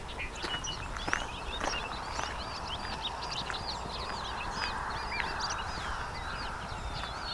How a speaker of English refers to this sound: So some very active bobolinks here.